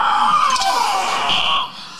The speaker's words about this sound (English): We heard a scream.